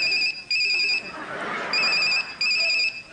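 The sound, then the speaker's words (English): A phone rings in repeated electronic trilling bursts, four short pulses with brief gaps between them, fairly loud and clear over a murmur of background chatter. “Can I phone a friend?”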